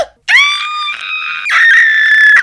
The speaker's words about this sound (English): Why are you screaming in my ears?